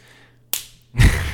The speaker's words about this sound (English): It's me slapping his bare skin. Yo. His hairless baby skin. Chest. You can just slap it now.